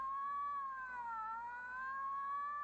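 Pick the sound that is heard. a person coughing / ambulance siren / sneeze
ambulance siren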